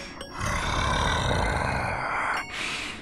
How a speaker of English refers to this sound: Be warned, this story contains tension, peril, and threat of death, and scary, scary growling.